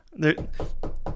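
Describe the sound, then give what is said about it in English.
A voice imitates a secret knock of two knocks on a door, a quick series of short, rhythmic knock sounds, moderately loud, following a brief vocal sound at the start. “Give two knocks, you know.”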